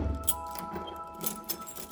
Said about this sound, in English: Your bed is just behind this door. Just put the key into the keyhole and turn it. You can do this.